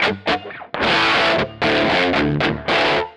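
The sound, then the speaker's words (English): A heavily distorted electric guitar, played through a Marshall amp with a graphic EQ and a reverb, plays a few loud, sustained chords with short breaks between them, the tone thick and saturated with a touch of reverb tail. “The Marshall behind me. Okay, cool. And that's a graphic EQ and a reverb.”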